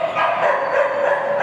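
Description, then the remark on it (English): A dog at the Animal Protection Office shelter in Hsinchu barks playfully in a quick, steady run of yaps at moderate loudness, jumping for joy and seeking attention from a shelter employee, with no pauses and no one talking. “The dog jumps for joy, teasing his friend and looking for attention from the shelter employee.”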